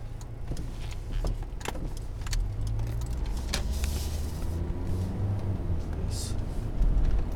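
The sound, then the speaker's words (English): Steady low rumble of stopped road traffic and a car engine fills the scene, with occasional light clicks and rattles and no voices. “stopped traffic.”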